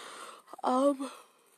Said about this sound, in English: Sorry about the yawn. It is late in the night.